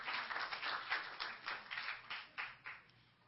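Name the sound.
audience clapping hands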